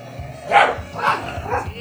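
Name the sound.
dog barking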